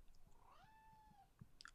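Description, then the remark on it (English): A single meow from Schmoffin, a female cat purring and meowing at the same time, with a rolling, trilling start that rises and then holds a steady pitch for about a second, followed by a few small clicks and soft rustles. “It's when she purrs and meows at the same time. It trills.”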